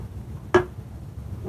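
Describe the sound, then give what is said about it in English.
A single sharp dog bark cuts in briefly over a low background murmur, loud and abrupt against otherwise quiet, steady noise. “Dog is barking.”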